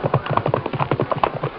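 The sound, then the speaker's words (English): Two horses, Silver and Scout, gallop down a narrow trail to the plains, their hooves drumming in a fast, steady rhythm of many quick, thudding beats, loud and continuous with no voices over them. “At breakneck speed, the masked man and Indian urged their horses down a narrow trail to the plains. Then they galloped forward to intercept the runaway stagecoach.”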